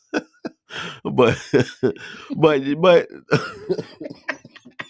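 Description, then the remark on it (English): A few short, dry coughs and throat-clearing bursts, scattered around a stretch of strained, voiced sound, with more brief coughs trailing off at the end; the coughing is put down to changeable weather in St. Louis. “see, now you're going to make me cough because St. Louis weather been crazy.”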